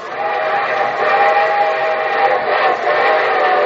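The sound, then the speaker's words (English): A steam train's whistle blows in a long, sustained wail over the steady rumble of the train, loud, with no one speaking. “And from Hollywood, here comes the star-studded show train.”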